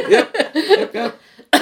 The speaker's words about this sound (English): Yep. I have a cough.